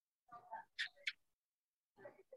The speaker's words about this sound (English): The chirping on the mic, if you can hear it, is the geckos.